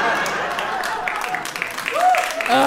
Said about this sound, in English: People are clapping at my frivolous spending. They're like, you go, girl, you earned it.